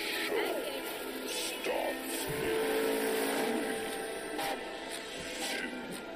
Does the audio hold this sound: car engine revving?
yes